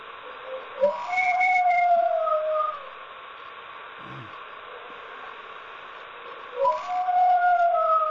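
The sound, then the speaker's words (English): Two long, wavering howls with little bark-like yips at their starts, separated by a quiet stretch of background hiss. Each howl rises, holds, and slowly trails off. An audio recording presented as the Dayton Dogman. “you can actually hear the barking sounds in there, very much like the Cincinnati one”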